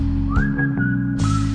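A single clear whistled note glides upward and then holds steady for about a second, prominent over a constant low droning background.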